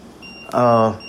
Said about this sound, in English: Let me move my phone away because it's still going off.